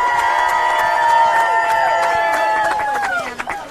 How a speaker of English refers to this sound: And we have an ally here with us today. The founder of Women on the 20s. Let's give a big, huge round of applause